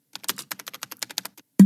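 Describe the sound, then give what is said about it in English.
A quick burst of typing on a computer keyboard, about a dozen crisp clicking keystrokes in a steady, rapid rhythm, ending with a heavier thump. Clear, with no voices. “His fingers hovered over the keys for a spell before he found the exact right words to say.”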